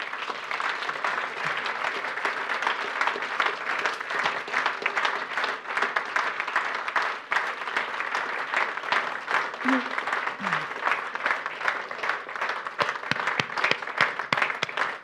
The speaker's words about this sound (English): You know, it's less than 48 hours before the big game, so a huge round of applause, please, and a big croeso to the boss man, Wayne Pivac, and, of course, Stephen Jones.